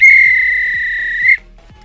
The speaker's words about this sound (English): If this were a real bit of extra time, this is when the referee blows the whistle because it's finished.